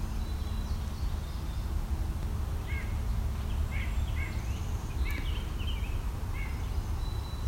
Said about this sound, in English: There's also a great crested flycatcher or two here.